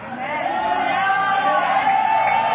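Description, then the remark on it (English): A large church audience shouts and cheers continuously during a pastor's sermon, with scattered clapping mixed into a dense, steady roar of many voices. “You first, because few of you know mathematics, are the one clapping your hands. The rest are just shouting, following for nothing.”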